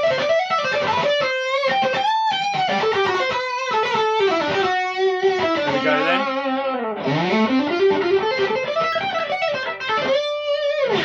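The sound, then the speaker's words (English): Electric guitar played through a Boss OD-3 overdrive pedal, a melodic lead with sliding bends and sustained notes, loud, with a brief spoken phrase at the start. “That's the OD3, Boss OD3.”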